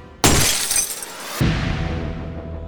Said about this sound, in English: He'd gone to bed hours beforehand, but just as he'd started to doze off, a light bulb in his bedroom exploded.